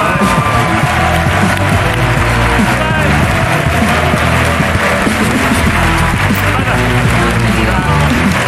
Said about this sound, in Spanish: No sé si viene a hablar de esto o viene a otra cosa, pero en cualquier caso pido un aplauso para Inés Hernán, el RESISTENCE.